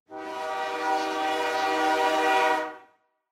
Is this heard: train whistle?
yes